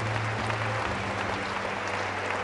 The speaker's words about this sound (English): Oh, clap for them as they come quickly.